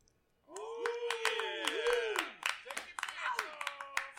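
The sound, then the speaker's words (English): Layered applause with many overlapping claps and a chorus of rising and falling "woo" cheers, starting suddenly and staying loud throughout, like a small crowd cheering, though all recorded by one person layering his own applause and woos. “Sitting here layering applause and layering different woos and whatnot.”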